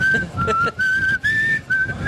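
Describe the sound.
A person whistles a slow, eerie TV show theme melody of sustained, wavering notes with brief breaks between phrases, clear over a low rumble of background noise.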